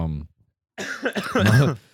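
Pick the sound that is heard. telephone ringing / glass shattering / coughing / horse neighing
coughing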